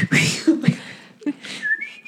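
A person whistles a short, wavering tune, with breathy, airy tones and brief pitch slides, some low rumbling noise underneath.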